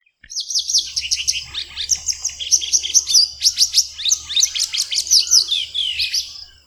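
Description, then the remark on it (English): A sparrow-sized white-browed wagtail sings a continuous, varied song of bright whistles and rapid chirping phrases, clear, with a faint low rumble in the background and no talking. “Scan the banks carefully and you'll find a sparrow-sized bird, the white-browed wagtail, chasing insects.”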